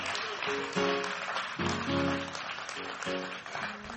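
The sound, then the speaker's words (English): An audience claps steadily for a few seconds, a dense, continuous patter of many hands, with sustained lower tones from voices or instruments swelling underneath. “I can't clap real loud right now, but somebody clap for me.”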